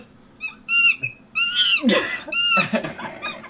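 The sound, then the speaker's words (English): A rapid run of monkey calls played from a video: shrill whistling hoots that rise and fall, broken by a couple of harsh, raspy screeches. Loud, with no talking. “it's 1 hour of monkey sounds, and the beginning says, warning, this video is 1 hour of monkey sounds.”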